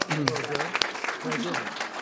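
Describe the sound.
An audience applauds in a dense, steady wash of clapping that holds for about two seconds, with a voice or two talking underneath the noise.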